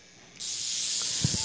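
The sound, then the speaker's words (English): An electrical crackle from a violet wand, a modern version of a vintage medical electrode device, switches on abruptly and holds as a steady, bright sizzling hiss, with a couple of faint low thumps near the end. “Well, that crackling that you just heard is a violet wand.”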